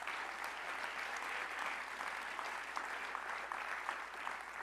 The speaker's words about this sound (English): Clap your hands while I get a drink of water.